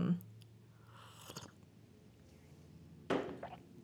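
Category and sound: food or drink, sipping tea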